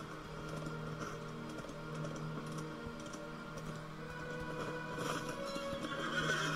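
Hooves clip-clop in a steady rhythm while a war steed, ridden around inside Helm's Deep, snorts and whinnies, set against a busy, droning background with no one talking.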